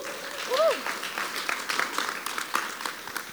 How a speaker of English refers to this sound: So let's just give them a round of applause.